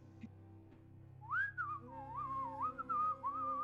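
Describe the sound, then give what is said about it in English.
A constable whistles a wavering little melody, a few sliding notes rising and falling over a low steady background hum, with no talking. “You guys walk by the whistling constable, give him a nod, and he nods in return.”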